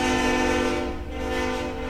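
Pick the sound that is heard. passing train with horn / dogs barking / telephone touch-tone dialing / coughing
passing train with horn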